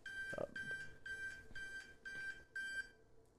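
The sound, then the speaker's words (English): A phone alarm beeps in a steady repeating pattern, about six bright electronic tones with short gaps between them, clear, with faint background noise underneath. “I didn't know how to tell you, but my phone just told you.”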